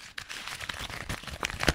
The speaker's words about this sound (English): which appears to be a crumpled piece of paper bearing the scrawl of none other than our intrepid former intern, Scotland P. Diego.